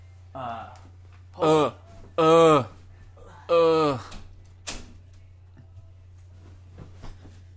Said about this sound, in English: Hold on, let me close the door quick. Okay.